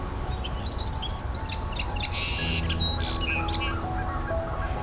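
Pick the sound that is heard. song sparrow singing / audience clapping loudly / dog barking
song sparrow singing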